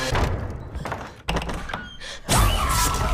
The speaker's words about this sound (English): Oh, why'd you open the door? Damage. Doors unlocked.